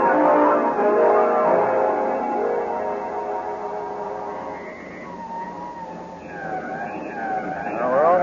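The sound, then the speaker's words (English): A police car drives past with a rumbling engine, and partway through its siren starts wailing, rising and falling loudly over the traffic noise. Nobody speaks. “Quickly, Stevens, a police car and an escort.”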